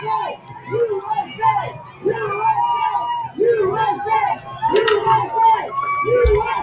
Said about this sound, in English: This was yesterday in Florida, in near Mar-a-Lago, President Trump and his motorcade driving through the Florida area and being cheered by a huge crowd, and he waved to them.